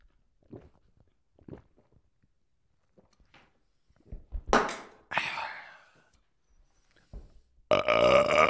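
A few faint gulping sounds as a drink is chugged, then a couple of short, rough burps after a pause, ending with a louder, harsh belch-like burst. No talking.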